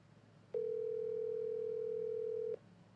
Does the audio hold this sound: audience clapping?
no